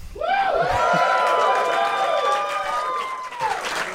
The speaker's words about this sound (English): Wow. We got a raucous crowd here. We do. Wow. This theater is almost full.